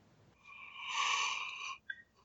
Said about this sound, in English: Well, there, that yawn tells you everything.